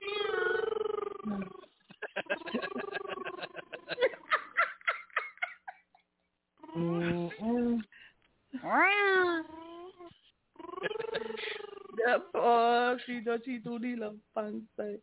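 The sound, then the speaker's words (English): A cat meows repeatedly, with a series of drawn-out, wavering meows separated by short pauses. The cat sounds fairly loud, and there is no talking over it. “Go ahead, meow for him.”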